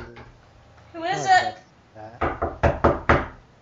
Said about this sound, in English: Okay, you all wake up to the sound of... Who is it? Oh, okay, it's just knocking this time.